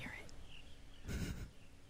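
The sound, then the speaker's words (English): A soft wash of an ocean wave swells and fades in the middle, with faint bird chirps calling in the background. The scene is quiet and low in volume, with no clear talking. “Birds. Nice. The waves.”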